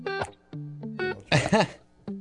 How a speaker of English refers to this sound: See, I had to burp, and I moved my head away. Funny how that happens. You can do that if you're not trying to get words out, and it comes out of nowhere.